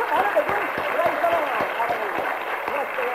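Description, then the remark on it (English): A group claps in a steady rhythm, roughly two claps per second, applauding a woman who was saved and baptized in the Spirit, while a man speaks loudly and enthusiastically over them, praising the Lord. “Give her a clap.”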